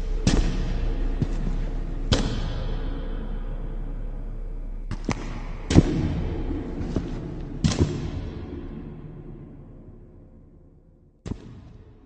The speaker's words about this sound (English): In fact, I can actually hear footsteps. I wonder who that is.